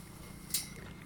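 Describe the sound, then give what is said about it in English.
A feral pig rubbing its rump against a fence right beside the recorder, making a low, steady scraping rumble with one brief sharp creak midway, fairly quiet and with no talking. “What you just heard was a pig rubbing their behind up against the fence right beside me.”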